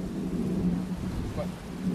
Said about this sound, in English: It's windy in every direction, baby. It's like we're at the center of a cyclone. That's okay. The audience can get the ambiance.